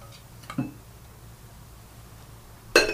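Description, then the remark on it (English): Glasses clinking together in a toast: a soft knock early on, then a bright, ringing clink that lingers briefly over a low background hum, with no talking. “Oh, cheers to that.”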